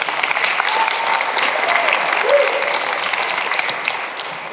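A crowd claps steadily for several seconds, a dense, even patter of many hands that holds at a strong level before easing off slightly at the end, with no voices speaking.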